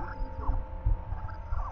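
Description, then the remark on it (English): A finger flicking a giant, chipped metal pipe among trees makes a few deep, booming thunks that echo off the surrounding trees, each followed by eerie, wavering ringing tones that echo and sweep like a whale call. “It echoes off of from every tree around you, that thunk, thunk, thunk, thunk, thunk, thunk, thunk.”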